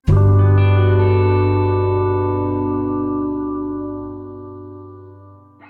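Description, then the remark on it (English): A loud, harsh electronic buzz starts abruptly and holds steady as one thick, droning tone, slowly fading over several seconds with a faint echoing tail. No voices. “Then a large buzzing sound enters your ear and darkness consumes you once more.”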